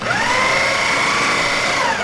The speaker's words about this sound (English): And if I want to discard remotely, I just tap the dispose button and the fridge will use its food disposal tube to shred the manchego.